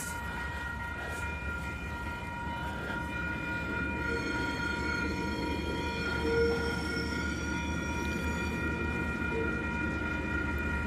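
A diesel freight train, Number 345, the NZ Steel coil train, rolls slowly past, its engines rumbling low and steady while sustained high-pitched wheel screeches ring out over the continuous roar, loud.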